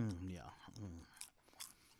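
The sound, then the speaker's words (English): A voice hums or speaks briefly, then a few crisp, crunchy chewing bites follow as ASMR, short irregular bursts of food being crunched between the teeth. “Crunch, crunch, crunch.”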